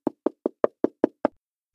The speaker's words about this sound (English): Not too long before, at around 11 o'clock at night, there was a knock at Rabbi Levi Yitzchak's door.